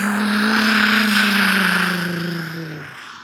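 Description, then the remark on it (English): A vehicle in street traffic passes in front of a bus stop on a hot, sweaty day, its loud engine drone dropping slightly in pitch as it goes, then fading over the last second. No one speaks. “This was recorded, you know, in front of basically a bus stop.”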